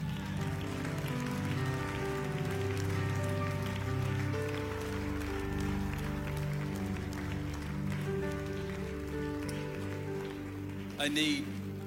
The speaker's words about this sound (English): Go on, keep clapping.